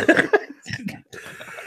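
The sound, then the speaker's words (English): A few short bursts of laughter give way to a couple of harsh coughs, followed by some quieter vocal noise. “Every time I laugh, I die coughing.”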